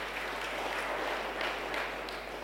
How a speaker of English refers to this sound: Let's clap God for that. Let's clap to God for that.